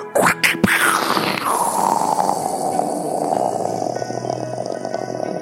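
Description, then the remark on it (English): A voice imitates lightning: a few sharp crackling bursts at the start, then a long, loud, gravelly rumble that slowly fades, with no words spoken. “Who wants to hear my best impression of lightning?”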